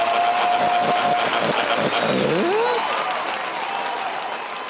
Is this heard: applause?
yes